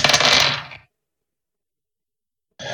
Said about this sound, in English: Trying to figure out. I'm just rolling a handful of dice and figuring out where they go.